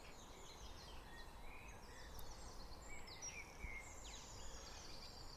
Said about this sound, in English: Hear all the birds. I mean, I don't know, maybe you could hear that before, but I didn't notice it. So many of them.